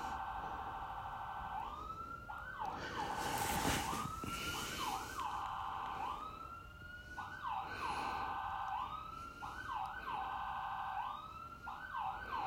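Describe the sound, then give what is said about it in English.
An ambulance siren from a nearby fire station wails continuously, its pitch sweeping up and down in a repeating cycle, loud with a broad burst of noise partway through, no one speaking. “And apologize for what you're hearing. The sirens of the ambulance. I live right behind a fire station.”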